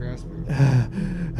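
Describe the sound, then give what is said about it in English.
A person gasps for breath, two strained, voiced inhalations in quick succession, loud and breathy with a ragged, panicked edge. “Yeah, gasping.”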